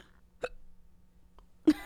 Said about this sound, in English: Yeah, hiccups.